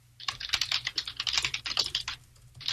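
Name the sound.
computer keyboard typing clicks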